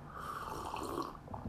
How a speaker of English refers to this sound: By the way, if anybody has tea by now, it's time to do the simultaneous sip. 3, 2, 1,